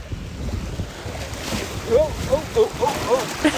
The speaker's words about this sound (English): I'm now right at the water's edge. It's quite cold, just some splash under my feet. It is February.